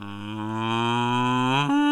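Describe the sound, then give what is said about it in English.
A person imitates a cow with a single long, steady moo, loud, holding one low droning pitch before it shifts slightly at the end. “Give us a moo.”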